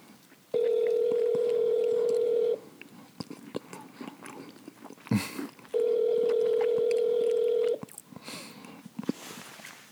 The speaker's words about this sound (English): You let the phone ring off with voicemail? You let the phone ring off with voicemail?